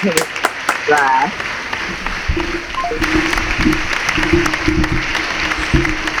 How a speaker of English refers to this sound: Well, I'm going to send you out on some applause, and I'll call you later.